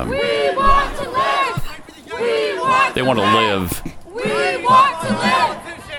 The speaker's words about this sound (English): Here he is walking through, I don't know where he's walking to, but he's got a whole crowd of people that are hassling him. This is in D.C., if I'm not mistaken.